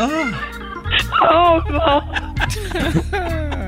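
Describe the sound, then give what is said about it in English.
Two dogs in the back seat of a Chevy Impala in a parking lot whimper and yip in a steady run of high, wavering whines and short sharp yelps, rising and falling in pitch over a few seconds, fairly loud and with no talking. “whoever left your two dogs in the back seat of the Chevy Impala in the parking lot”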